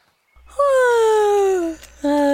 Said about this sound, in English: Okay. That was officially the cutest yawn I've ever heard. People do say I have a cute yawn.